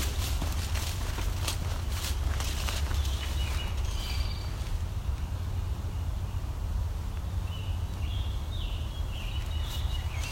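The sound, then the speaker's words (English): A scarlet tanager sings a few faint, hoarse phrases, spaced apart, in an old-growth woodland area, while footsteps crunch steadily on a trail over a low background rumble. “There we go. The scarlet tanager.”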